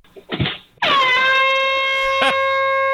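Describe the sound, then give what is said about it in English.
A loud, sustained air horn blast, sounded in the dark by a couple at someone letting their dog foul their yard, starts abruptly after a brief burst of voice and holds a steady, harmonically rich tone for about two seconds, with a short noisy burst near the end. “He's got a megaphone. He's got an air horn, and the couple strikes.”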